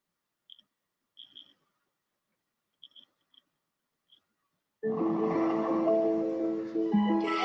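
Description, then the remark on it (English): A few light, sparse taps of rain, coming in off the Bay of Fundy, on a window, scattered irregularly over several seconds, before loud guitar music suddenly starts and fills the rest. “But there's a little bit of rain tapping the window coming in off the Bay of Fundy.”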